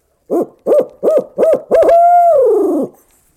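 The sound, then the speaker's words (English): A human voice imitates a variation of a barred owl call: five quick, clipped hoots in a steady rhythm, then one long drawn-out hoot that slides downward at the end, loud with no other sounds. “And barred owls, you're probably fully aware that they don't always do 8-notes. They do variations. So my next call, anyway, would probably be something like this.”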